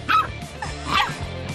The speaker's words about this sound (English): Volume up here with the puppy. He has the hiccups. And he tries to bark it out.